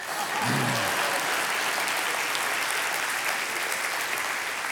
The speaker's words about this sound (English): Just be clapping for those teenagers, all right?